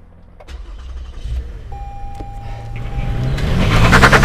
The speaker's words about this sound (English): And we see this in there where he says, go drive now, now. And he has to press the button to turn on the car.